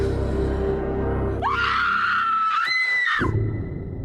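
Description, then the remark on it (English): A woman in a horror film lets out a loud, sustained, high-pitched scream lasting about two seconds, rising sharply then wavering, set against a low rumbling background like a film soundtrack. “Please don't scream.”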